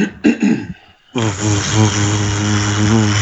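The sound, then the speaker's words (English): A few short breathy puffs, then a person imitates a motorboat with the mouth as a game buzzer sound: a loud, sustained, low rattling buzz that drones steadily for about two seconds. “Motorboating. Sounded like a vacuum cleaner.”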